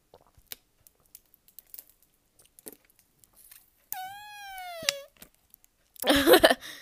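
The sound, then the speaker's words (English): A drink makes a squeaky, fart-like tone lasting about a second, steady and moderately loud, after soft scattered clicks, followed by a burst of louder crackling, crinkling noise. No one speaks. “Don't worry, that was not a fart. That was actually the drink.”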